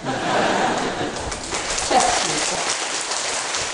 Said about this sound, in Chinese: 奇怪，讲一句台语就拍手。